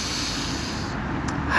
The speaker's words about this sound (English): Let's take a moment here. Let's take a breath, first of all.